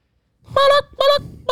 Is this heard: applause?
no